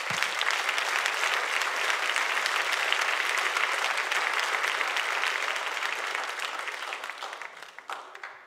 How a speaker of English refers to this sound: Why don't you just give him a hand clap of praise?